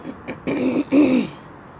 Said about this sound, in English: Just looking around and seeing how very nice the day is today. The birds sound so close, but I, of course you don't get to see them.